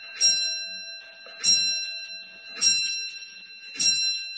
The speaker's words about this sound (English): Here we go. Here comes the clock.